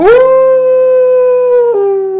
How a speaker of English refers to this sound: What is like you and me when the sun's shining bright, but gets hairy and scary when the moon's out at night? Its howling will stop all the beats of your heart.